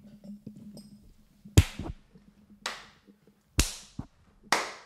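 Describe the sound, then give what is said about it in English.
Four sharp hand claps ring out about a second apart, each a crisp, loud crack with a short bright tail. The first and third sound fuller and heavier. No one speaks. “Count us down. Three, two, one. Clap.”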